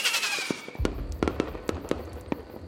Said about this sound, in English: Finally, fireworks are set off above the lake.